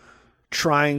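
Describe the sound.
A voice imitates heavy, labored breathing: after a brief quiet moment, one loud, breathy gasp rises into a strained, voiced groan and cuts off.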